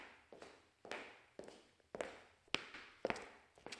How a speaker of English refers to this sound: Footsteps. I hear footsteps. I hear someone walking. Someone is knocking. Knocking on a door. I hear someone knocking on a door. The door is opening. I hear someone opening the door.